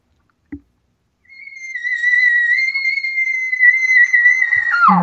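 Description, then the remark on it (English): A bull elk locator bugle blown on a call, imitating a bull looking for a cow, kept low and not loud for a Skype call: after a brief click, one long, high, whistling tone holds steady for about three seconds, then breaks and drops sharply into a low, rough grunt at the end. “let me make the sound with the bugle, okay?”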